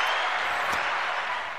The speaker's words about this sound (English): Just hold on till I see now, just until I set you up with the applause here. There it went out.